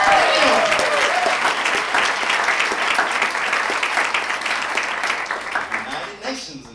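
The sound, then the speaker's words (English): Audience applause, a dense, steady wash of many hands clapping for Iran, holds strong for several seconds before thinning out and fading near the end. “Iran, clap it up for Iran.”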